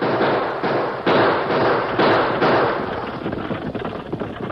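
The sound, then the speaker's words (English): Several gunshots, fired by Choctaw and Rance Purdy from a stagecoach at a masked man on horseback, too far away for accurate shooting, crack at irregular intervals, each a sharp burst over a steady, rumbling wash of noise that slowly fades toward the end. No one speaks. “They opened fire, but the distance was too great for accurate shooting.”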